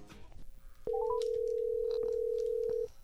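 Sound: phone call dialing tones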